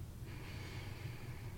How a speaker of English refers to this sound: Very playfully, very easily. Just kind of let it happen for you. Thank you for engaging in some belly breathing with me.